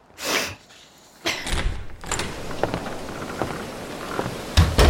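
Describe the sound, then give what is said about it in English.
A door is pulled open with a scraping, creaking sweep and a few knocks and rattles, set against a steady hiss like rain, ending on a louder thud. “My son, open the door.”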